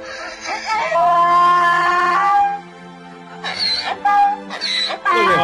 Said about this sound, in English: here, look, I'm going to show you the video of the little girl who raised the donkey and came back to see the donkey, and then the donkey cries.